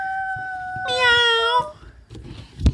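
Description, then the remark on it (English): A child's voice imitates a kitten's meow in one drawn-out, high-pitched call that jumps higher midway, clear, followed by quiet background noise and a short thump. “are you a little kitten? Meow. Meow. Meow.”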